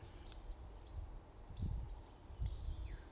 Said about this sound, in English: There's a veery calling in here. This bird going, peer, peer.